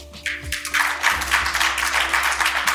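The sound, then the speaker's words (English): Audience applause at a debate, answering a question on how many changed their minds: a dense, steady patter of many hands clapping, starting softly and swelling to a sustained, fairly loud ovation with a faint low hum underneath. “I'm going to have a second follow-up question, but the first question by round of applause, how many of you changed your minds from yes to no or no to yes on this question today?”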